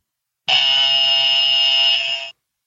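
A single harsh, loud wrong-answer buzzer blares steadily for nearly two seconds, a flat, raspy electronic tone with no voices, then cuts off abruptly.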